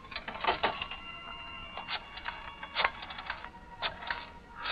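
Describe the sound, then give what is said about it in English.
A telephone receiver is lifted and a number is dialed to call Tony Baines at his club: a clattering run of sharp mechanical clicks and brief whirs at an uneven pace, with no voices. “Right now, there's a very important telephone call you must make. Go on. Pick up that phone.”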